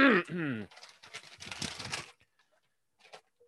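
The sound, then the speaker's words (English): Crinkly rustling of a single piece of paper being handled in a few quick bursts, preceded by a brief voiced sound, then a near-quiet pause with one faint rustle near the end. “A lot of paper wrestling.”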